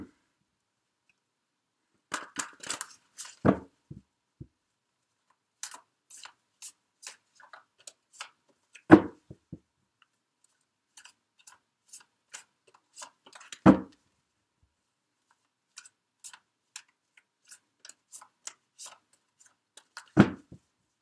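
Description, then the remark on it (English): Tarot cards are shuffled by hand in quick papery bursts and riffles, with four louder slaps at steady intervals as the deck is squared or cut, with no talking. “Keep shuffling.”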